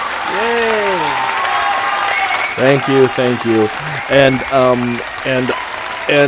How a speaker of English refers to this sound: I just want to celebrate the fact that I finally beat the quick drop. Yay! Yay! I need to get the clapping.